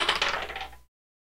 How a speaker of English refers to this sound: All right. You stand up. You roll the dice.